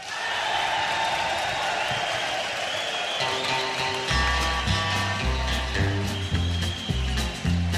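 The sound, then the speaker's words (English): A large crowd at a 1968 concert at Folsom Prison cheers and applauds in a dense, roaring wash of noise, reacting to the title track and opening number, then a band kicks in with a steady bass and guitar rhythm as the cheering continues underneath. “Right now, we'll take you back to that day in 1968 as we hear the crowd react to the title track and opening number,”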